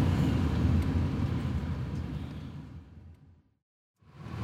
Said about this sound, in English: We pull into a parking lot and we all get out of the car.